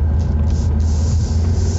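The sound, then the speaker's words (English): A big GMC pickup truck rolls by while a driver waits to make a left turn, its deep engine rumble and road noise filling the moment as a steady, loud low drone with no voices. “We'll wait for this guy. Big GMC truck, he ain't gonna hit me.”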